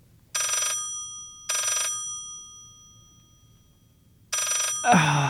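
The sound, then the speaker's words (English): A telephone rings in three loud, bright bursts, the first two close together and the third after a longer pause, with a voice starting to speak just as the last ring ends. “But when the phone rings at odd times, You know, what happens if you don't pick up the phone?”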